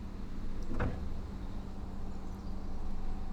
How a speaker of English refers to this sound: Just walking down to the stern, opening the door.